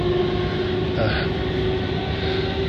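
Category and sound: vehicle, train running on rails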